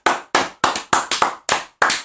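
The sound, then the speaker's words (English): Someone claps their hands about ten times, applauding the two men of a fight, in a loose, slightly uneven rhythm, with a few quick double claps. The claps are sharp and fairly loud, with no voices. “I applaud those two gentlemen.”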